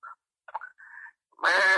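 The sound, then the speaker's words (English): A person imitates a tiger with a few short, scattered vocal noises, then breaks into a loud, sustained, raspy roar that carries to the end. “Tiger.”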